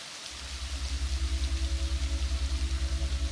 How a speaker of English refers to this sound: The binaural soundscape is light rain.